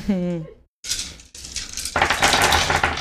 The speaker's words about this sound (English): But go ahead and roll your dice pool, which is 20 dice.